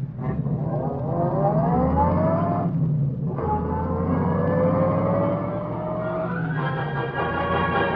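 A car engine revs hard and pulls away, its pitch climbing, dropping briefly as it shifts, then rising again. Loud and continuous, with no voices.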